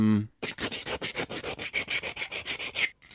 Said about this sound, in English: I mean, it's almost like a nail file, like a filing, like sharpening a knife or something like that. It is a knife sharpener.